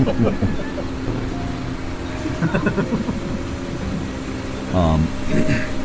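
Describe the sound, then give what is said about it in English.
A car horn gives a short, loud honk at a farm, followed by a second brief blast, over a steady engine hum with murmuring voices in the background. “I assume somebody would have come out when you honked if there were any survivors.”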